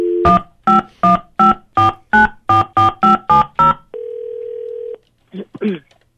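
telephone dial tone

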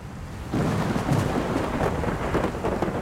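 rain

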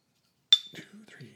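beer glasses clinking

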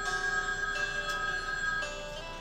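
telephone bell ringing

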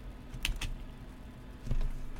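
typing on a keyboard

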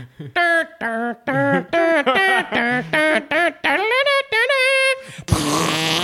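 fart noise

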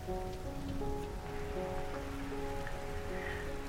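rain falling

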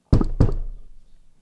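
knocking on a table

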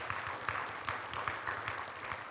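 audience applauding

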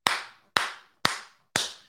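hand clapping

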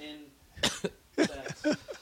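coughing

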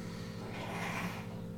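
nose blowing

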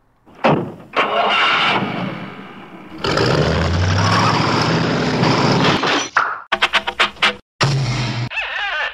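bus engine running

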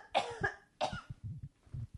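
person coughing

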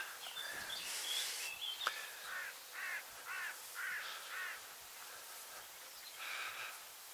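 crow cawing

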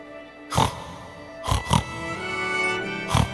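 pig oinking and snorting

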